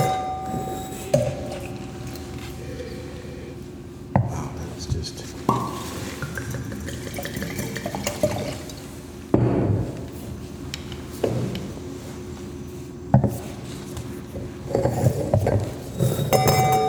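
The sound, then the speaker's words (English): Bordeaux wine glasses clink and tap a handful of times at irregular intervals, fairly crisp, with a faint lingering ring, while a person speaks briefly amid soft background bustle. “Why don't we'll use the Bordeaux glass for the light.”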